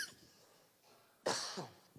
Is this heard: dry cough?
yes